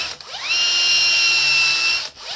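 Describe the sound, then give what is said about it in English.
A power drill with a 3/4 spade bit spins up, runs at a steady high-pitched whine for under two seconds while the bit bores through the center of a plastic part, then winds down. Fairly loud, with no talking. “is we're gonna take a 3/4 spade bit or paddle bit, and let's make sure we get a good shot here.”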